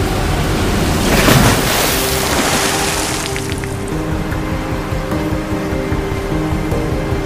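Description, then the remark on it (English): A loud rush of splashing water bursts up near the start as Batman's vehicle plows through a waterfall into the Batcave, its engine droning steadily underneath and continuing after the water noise fades to a softer wash. “Rachel screamed as they splashed right through the waterfall and landed in the Batcave.”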